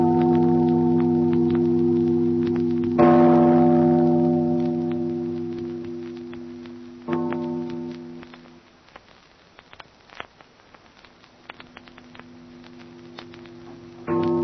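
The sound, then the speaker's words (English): A large tower bell tolls in slow, heavy strokes, each loud clang leaving a deep humming resonance that fades before the next strike. No voices are heard. “Father, listen to the bell. Listen to the bell. It rings in spite of her.”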